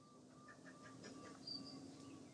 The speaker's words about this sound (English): I guess as we listen to the birds and feel our bodies, it's a bit like distracting us so that our minds and our hearts can be a bit more quiet.